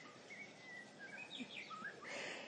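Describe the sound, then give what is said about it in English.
Several birds chirp and whistle outdoors, short bright calls overlapping over a soft, steady background hiss, with no one talking. “I just love the birds here. It's so wonderful. They're happy.”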